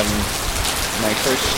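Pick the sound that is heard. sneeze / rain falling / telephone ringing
rain falling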